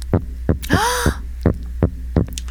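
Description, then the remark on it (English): A fish recorded underwater: a steady series of low, thumping pulses, roughly three per second, over a constant droning hum, with a brief wavering whine partway through. “That is a fish recorded underwater.”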